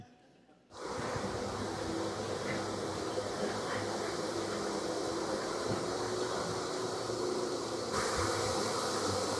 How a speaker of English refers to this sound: last week being trapped by, and bees were swarming him.